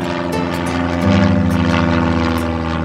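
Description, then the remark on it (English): A small propeller plane's engine drones loudly and steadily as it flies upriver from the city of Manaus, Brazil, its throbbing hum swelling slightly about a second in and holding for the rest of the short stretch, with no voices. “My aunt and I went to Brazil and flew in a small plane upriver from the city of Manaus.”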